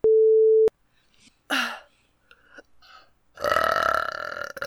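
A steady electronic beep opens, followed by a short gurgling belch and then a long, loud, rumbling burp close to the microphone that drags on for over a second.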